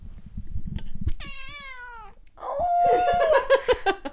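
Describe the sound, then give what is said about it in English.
A cat named Alfie meows twice: first a clear, drawn-out meow, then a louder, rougher, more insistent one. Soft thumping and handling noises come before. “Here at Queer Podcast HQ, we have another mascot, and that is Alfie Cat.”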